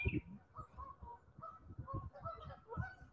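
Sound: birds calling outdoors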